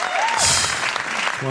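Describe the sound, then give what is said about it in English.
A brief round of applause for a shout-out to the speaker's partner, a dense, steady wash of clapping lasting only a moment, with a faint rising tone at the start and some voice-like sound mixed in. “Can I get a round of applause on that one?”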